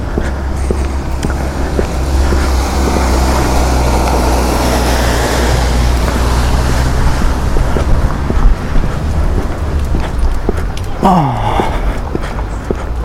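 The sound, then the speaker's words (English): A tractor engine rumbles low and steady as it passes along with horses outdoors on a warm winter day, its deep drone filling the scene with gusty wind noise, and a brief higher sweeping sound cuts in near the end. “Oh my goodness, horses and a tractor.”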